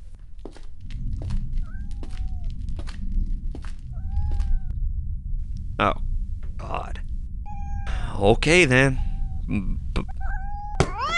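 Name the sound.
kittens meowing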